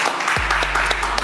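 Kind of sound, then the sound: crowd, clapping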